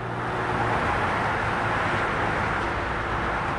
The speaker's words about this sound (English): You can get a bird's eye view of the traffic roaring by on Route 295 by standing on an old pedestrian bridge connecting Deanwood with Kenilworth